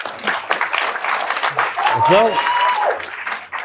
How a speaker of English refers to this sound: Clap it up. Clap it up.